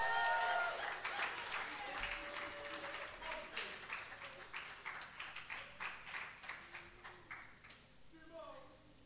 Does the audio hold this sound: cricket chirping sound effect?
no